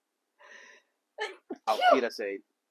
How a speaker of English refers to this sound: Gesundheit.